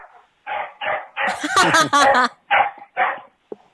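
animal, dogs barking

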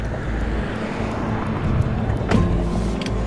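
vehicle, car pulling up

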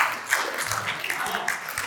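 crowd, audience applauding

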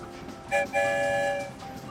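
vehicle, train whistle blowing

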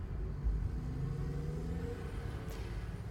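vehicle, car driving

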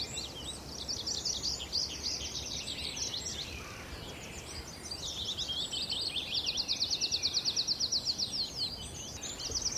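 bird, tree pipit song

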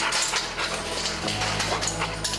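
animal, excited dog

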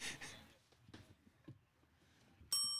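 signal or alarm, bell ringing

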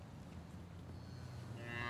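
animal, cows mooing

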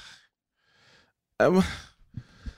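human body sound, heavy breathing

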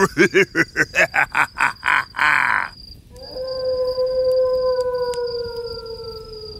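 animal, wolf howling

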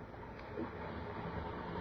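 ambience, railway station platform ambience

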